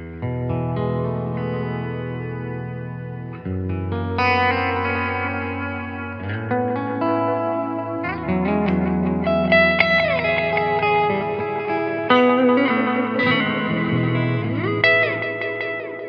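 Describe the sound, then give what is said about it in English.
Sustained electric guitar chords played through an Echo Wreck delay pedal by Catlin Breads and a reverb wash out in long echoing repeats and a deep reverb tail, layered and shimmering, played steadily at moderate volume with no voices. “which in conjunction with the reverb gives that kind of lushness.”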